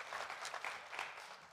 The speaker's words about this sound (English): Come on, give the Lord a great big hand clap.